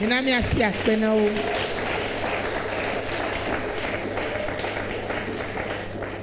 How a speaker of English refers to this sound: Let's clap for them.